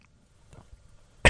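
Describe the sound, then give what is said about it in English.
A single loud, sharp cough bursts out after a near-silent stretch, a person imitating a man's cough. “And then he'd start coughing.”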